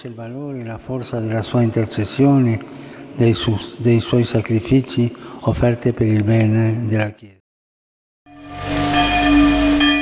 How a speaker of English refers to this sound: Church bells tolled in Martel, Germany, Pope Benedict's place of birth following the news of his death.